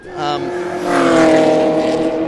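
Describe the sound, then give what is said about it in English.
Loud race car engines, a VY HSV being overtaken by an R32, roar past, their buzzing whine rising in pitch and swelling to a peak midway before easing off slightly, a continuous high-revving drone throughout. “There's a VYHSV getting chopped by an R32 GDST, by the look of it.”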